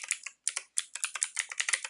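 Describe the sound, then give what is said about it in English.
Rapid typing on a computer keyboard while signing back into a computer that keeps falling asleep, a dense run of crisp clicking keystrokes with a couple of brief pauses, fairly quiet with no voices. “Also, if you're wondering why I'm typing, my computer keeps falling asleep, and I have to sign back into it.”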